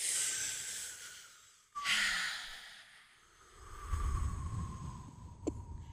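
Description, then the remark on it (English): Slow, deep breaths as a breathing exercise: a long airy inhale rising into a broad hiss, a pause, then a drawn-out exhale, with no talking. “Well, everybody likes breathing. Yeah, but like the deep kind.”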